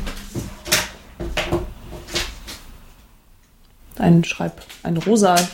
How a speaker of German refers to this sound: randaliert ein bisschen an ihrem Schreibtisch rum. Holt ein Zettel und ein Stift.